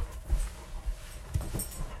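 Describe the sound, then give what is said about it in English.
A dog whimpers softly in a few short, high-pitched whines, with faint low bumps and shuffling in between; nobody speaks. “Sorry, my dog's being absolutely crazy.”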